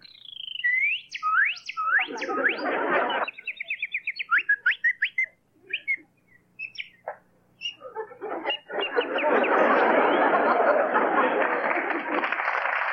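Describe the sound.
A kid whistles bird impressions: high sweeping chirps, then a quick run of rapid repeated tweets and scattered calls, before loud applause breaks out and fills the final few seconds.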